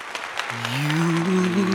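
A burst of applause with dense, steady clapping throughout, joined halfway by a sustained, slowly rising vocal cheer from someone in the group.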